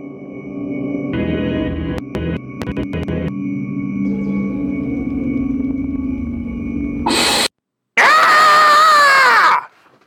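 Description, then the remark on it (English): A loud, high, wavering human scream lasting about a second and a half, added into footage of Google Earth VR, following a steady droning rumble with stuttering clicks, a sudden noise burst and a brief silence. “That was my scream, just so you know. I threw that in.”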